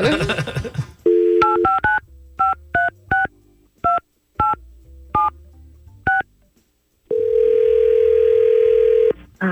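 A series of about ten short touch-tone beeps dialed in an uneven rhythm as Y100 radio hosts place a call to a listener, bracketed by steady telephone tones, with a brief burst of talking at the very start.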